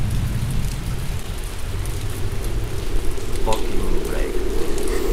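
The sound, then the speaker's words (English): Heavy rain pours down steadily, a dense hiss across the whole clip with rumbling low-end noise, loud with no break in the downpour. “Fucking rain.”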